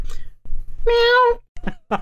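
A person does a single drawn-out vocal imitation of a cat's meow, fairly loud, with brief bits of speech-like sound around it.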